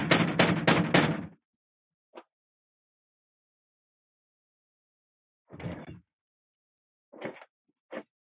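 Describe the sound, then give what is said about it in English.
A rapid burst of firm knocks on a door, then a single tap and a few scattered thuds separated by stretches of silence. Clear, with no voices. “Knock, knock, we'll be back.”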